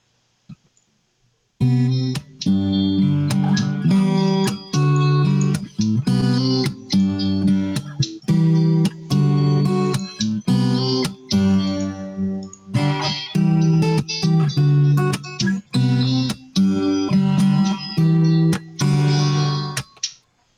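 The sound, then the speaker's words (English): An acoustic-electric guitar strummed steadily through maxed-out chorus and a little reverb, loud, with chords ringing full and shimmering after a brief quiet start, and no voices. “Let's add a little bit of reverb in there.”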